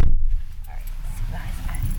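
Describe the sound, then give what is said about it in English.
The door of an Uber car shuts with one heavy thud right at the start, then a low, muffled interior rumble carries on with faint voices murmuring underneath. “Closing the door.”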